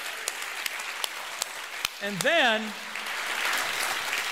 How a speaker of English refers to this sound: In fact, I think you better stand and give the Lord an applause right now because we just witnessed a miracle. Would you do that to the Lord?